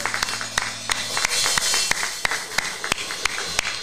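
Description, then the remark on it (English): An audience gives a hand clap of praise together, with sharp, irregular hand claps rising above a steady wash of many hands for about four seconds. No one speaks. “Give a hand clap of praise.”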